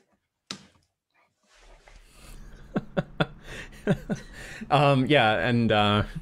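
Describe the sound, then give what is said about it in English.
A dog pants close to the microphone during a live stream, with quick rhythmic breathy bursts and huffs, followed by a louder voiced sound near the end. “That's not me breathing in the mic. Yeah, we have a dog that's joined us on the stream tonight.”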